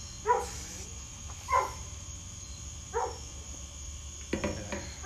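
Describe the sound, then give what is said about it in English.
A female dog, nearly 10 years old, barks several times in a slow, spaced-out rhythm, single sharp barks with a scuffle of noise near the end, over a steady background hum with a faint high insect-like drone. “We will take this time to cut to our sponsor, Muzzles. just any muzzle. Stop your dog.”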